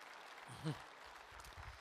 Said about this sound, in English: In fact, yeah, you can give that a round of applause.